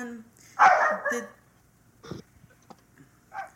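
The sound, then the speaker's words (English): A dog barks: two loud, sharp barks close together, followed after a pause by a few softer, shorter barks spaced out over the next couple of seconds. “Even the dog disagrees with me.”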